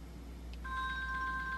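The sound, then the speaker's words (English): The 'Classic' phone ringtone, selected in a phone's sound settings, starts partway through: a steady electronic tone with bright, layered pitches held for about a second over a low background hum. “So that could be my ringtone. Classic. Classic. Selected. There's classic.”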